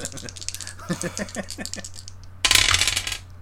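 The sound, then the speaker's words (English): Dice clatter and tumble across a hard surface in a quick run of sharp clicks, followed by a louder, noisier rattling burst near the end. “Well, let's roll the bad dice.”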